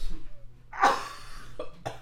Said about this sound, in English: The water just kept going down because I had so much in my mouth. Why do you have so much in your mouth? Because I coughed in the middle of drinking it.